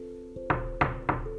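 Three firm knocks on the door of a house land in a quick, even rhythm, clear, over a steady low electronic hum that runs underneath the whole time.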